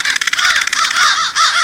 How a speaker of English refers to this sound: So, just how many crows are there in a roost?